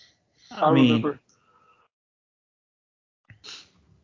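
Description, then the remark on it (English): A loud yawn with a drawn-out voiced groan lasting under a second, then a pause and a short, breathy exhale near the end. “Sorry, I had to yawn.”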